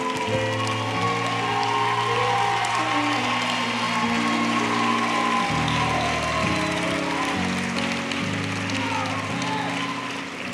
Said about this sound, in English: So, guys, I want you to clap.